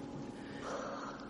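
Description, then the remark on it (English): A soft, drawn-out yawn, a breathy exhale that swells briefly in the middle and fades, with no talking around it. “That was a goddamn yawn. I heard a yawn.”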